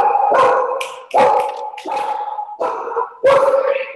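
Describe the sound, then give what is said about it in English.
A dog barks loudly, about five sharp, harmonic barks in a quick, slightly uneven rhythm, with no voices or other sounds competing. “Oh, now we have a lovely dog coming in.”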